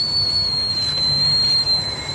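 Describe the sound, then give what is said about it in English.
A shrill, steady whistle from a tea kettle with steam coming out holds one high pitch for about two seconds, wavering only slightly near the end, over a soft low rumble with no voices. “It's a tea kettle fart.”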